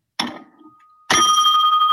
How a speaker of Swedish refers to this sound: Jag har en riktig sån fem i topp-klocka här hemma.